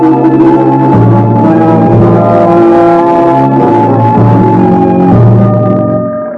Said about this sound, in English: I heard the fire engine. The whole Greensville Volunteer Fire Department, racing pell-mell toward the southern edge of town, where the Dexter Dean chemical plant was.